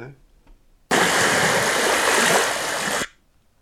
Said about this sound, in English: Well, that could have been anything. That was just rain.